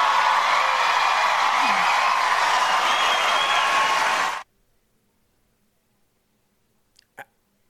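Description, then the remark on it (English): A US presidential debate audience applauds and cheers loudly after a candidate quotes Margaret Thatcher, a dense wash of clapping and shouts lasting about four seconds before cutting off abruptly into silence, broken only by one brief click. “What does that have to do with anything besides getting a cheer and a rise out of the crowd?”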